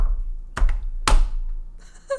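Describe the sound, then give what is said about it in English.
Two sharp, loud taps land about half a second apart, followed by a cluster of lighter, higher clicking taps as someone raps out Morse code on a hard surface. “Five taps, six taps? It was just dot long”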